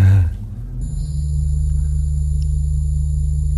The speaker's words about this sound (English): Wait, that was laser arc trap.